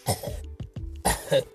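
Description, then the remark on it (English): A voice imitates coughing with two harsh, raspy cough bursts, separated by a few short throaty clicks. The sound is loud, with no other speech. “They just coughing the whole time.”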